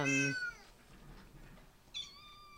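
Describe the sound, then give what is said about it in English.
A female pet cat meows loudly, a long drawn-out cry that fades, followed by a second, shorter meow after a brief pause, with no talking. “You started an Instagram account with this dog. I mean, cat.”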